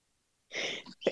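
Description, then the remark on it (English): A single fairly loud sneeze bursts out after a moment of silence, followed by a short breathy catch of sound. No one speaks. “Bless you.”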